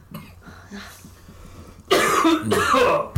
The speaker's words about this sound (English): I need a cough button. That's what we're getting season 2 is a cough button.